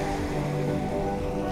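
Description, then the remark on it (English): A steady, continuous wash of ocean waves at Mitchell's Cove, a full rushing roar with a low rumble underneath and no distinct breaks or voices. “The ocean is magic. The water, deep, cold, and soothing.”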